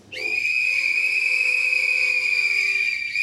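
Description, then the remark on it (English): Loud, sustained whistling from an audience holds one steady high pitch for about three seconds, starting abruptly and continuing without a break. No one speaks. “So please whistle if you have ever used a sex toy.”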